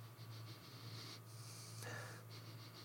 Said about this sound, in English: Okay. Sniffing it. It smells tropical. It smells pineapple-y.